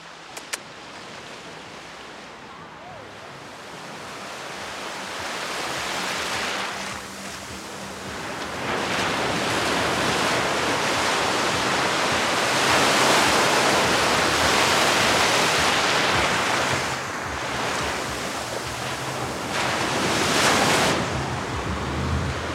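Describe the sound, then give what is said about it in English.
Ocean waves wash and crash onto the shore at Tulum in broad, surging swells that rise and fall in loudness, breaking around the ankles of someone standing in the water at about 80 degrees; a continuous roar of surf with a bit of wind noise and no talking. “I have waves coming up and crashing into my ankles.”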